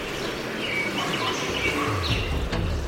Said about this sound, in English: Common grackle. Common grackle displaying. Hearing more Swainson's thrush calls mixed in there.